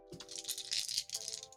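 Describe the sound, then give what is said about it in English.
Four dice clatter and rattle rapidly together for a second or two as they are rolled, a bright, busy clicking with a faint steady hum underneath and no voices. “So you're rolling with four dice.”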